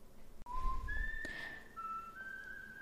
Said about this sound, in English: Gorgeous whistling.